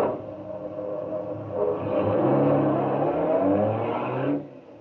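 A car engine revs up loudly and then pulls away, the motor's roar building and rising in pitch before dropping off sharply near the end.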